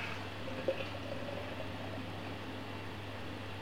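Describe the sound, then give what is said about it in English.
Beer from a can of Ransack the Universe poured into a Wirral Beer Festival glass, heard as a faint, steady fizzing hiss over a low hum, with one small clink near the start and no talking. “Let's get it in a glass.”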